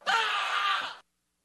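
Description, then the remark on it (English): A single loud, strained human scream from a person playing a video game lasts about a second, rising sharply and cutting off abruptly, delivered alone, much like a classic Wilhelm-style movie scream. “Have you guys heard my scream yet from League? It's pretty good. Is it like a Wilhelm scream? It's close to it.”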